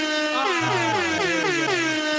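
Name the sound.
air horn sound effect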